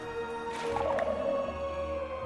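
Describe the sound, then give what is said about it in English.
A Minecraft sculk shrieker going off: an eerie, wet, squelching drone with layered whining tones that swell briefly and hold steady for a couple of seconds, with no talking. “Shrieker sound is a bit redemption. That's terrifying.”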